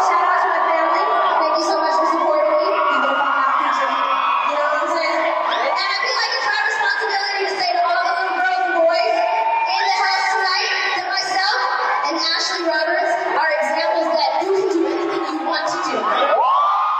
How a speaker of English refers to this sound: And then the crowd kind of roars.